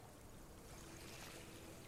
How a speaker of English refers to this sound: You can hear just the barest bit of water moving in the distance. And that's the sound I need.